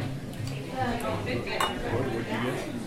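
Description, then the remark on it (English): Glasses clink together a few times in a toast, bright short chimes over a busy background of murmuring voices and tableware clatter. “Well, here's to you. Cheers. Cheers.”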